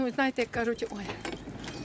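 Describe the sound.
Keys jangle and clink in quick, uneven bursts as someone searches for the key to a cellar and fumbles with the cellar door lock, while a voice speaks over the first part of the rattling.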